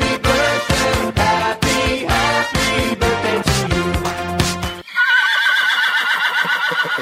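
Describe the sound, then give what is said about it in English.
A loud, brassy musical flourish plays for several seconds, then a horse whinnies alone, close and shrill, its quavering neigh rising and trembling to the end. “But first, we have to do some daily winnies.”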